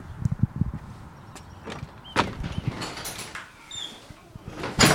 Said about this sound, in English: It has to be the front, 1800 South Prairie. There's a gigantic door here. Let's see if I can get inside.